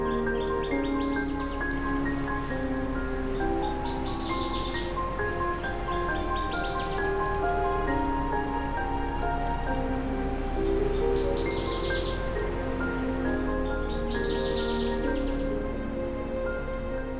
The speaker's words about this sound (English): Nevertheless, I'm finding species such as this northern water thrush, who likely arrived a week or two ago to much warmer weather, singing in spite of the chilly air.